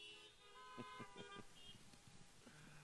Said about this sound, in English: Isn't that a beautiful truth? You go ahead and honk to that.